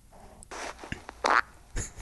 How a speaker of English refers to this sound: You going to play one? I'll play one. You want to set the clip up like they do on like late night shows? Yeah. Hey, here's me farting.